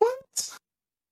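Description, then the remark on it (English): A single sneeze: a short voiced catch of breath, a brief pause, then a sharp hissing burst, followed by silence. “Bless you. Thank you.”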